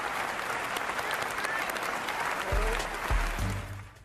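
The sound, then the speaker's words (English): Sustained applause from a large audience standing up, a dense steady roar of clapping hands that carries on without pause, with a few low thumps near the end as it starts to fade. “And the entire audience. Thank you so much. I knew stands up and applauds.”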